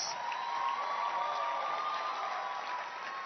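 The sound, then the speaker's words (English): An audience at an evening church service claps and cheers steadily for those who came to the stage, a dense wash of hand claps with raised voices and whoops mixed in, holding at an even, fairly loud level for several seconds. “I want you to clap your hands for all those who came to the stage to do any and everything, including our wonderful MCs.”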